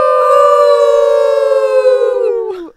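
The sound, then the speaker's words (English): A person imitates a wolf howl: one loud, sustained wavering note that holds steady for over two seconds, then drops away at the end. No other voices or sounds. “…, you like the wolf howl.”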